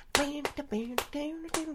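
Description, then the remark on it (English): Four sharp hand claps ring out at a steady, slightly uneven pace, each followed by a short sustained voiced tone, like someone beatboxing a clap track. “Just, and then there's a clap track in there.”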